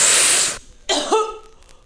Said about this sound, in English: This is when you cough.